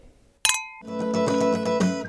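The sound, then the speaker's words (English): Glasses clink once in a toast, a bright, close ring that hangs for a moment before steady music starts and carries on beneath it. “Well, cheers, ladies.”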